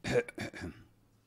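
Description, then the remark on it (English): A small throat-clearing cough in a few quick rasping bursts, quiet and brief, fading out within about a second with no talking around it, given as a signal to the monks that it is time to give the blessing. “And then he would end this conversation and signal to the monks that it was the time to give the blessing with a little cough.”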